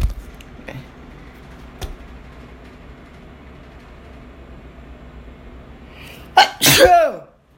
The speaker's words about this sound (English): I'm not gonna use a tissue because, like, that doesn't help with your nose when you sneeze.